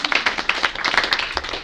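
A short burst of audience applause, many hands clapping in a dense, uneven patter at a steady moderate loudness, with no voices over it.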